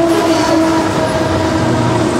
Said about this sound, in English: While people in Langley are used to fully loaded coal trains barreling through the downtown core, Rail for the Valley is promoting hydrogen-powered cars.